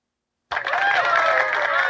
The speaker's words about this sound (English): Oh, wait, no, I'm sorry. Please put your hands together for Tony Thaxton.